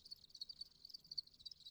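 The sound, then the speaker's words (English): Crickets chirp steadily in a dense, high-pitched trill with rapid pulsing, fairly quiet and continuous, with a low faint rumble beneath and no voices. “And then after about 5 weeks, once they reached sexual maturity, then, like, my whole apartment was full of cricket sounds.”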